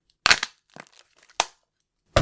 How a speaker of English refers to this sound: Oh, crap, I've broken that chair.